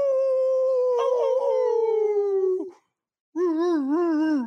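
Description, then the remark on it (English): A person lets out a loud, drawn-out hound-dog howl that slowly slides downward, then after a brief pause launches a second, wavering howl, imitating a baying dog with no talking. “if you guys are listening to the podcast and you hear the bark or the howl”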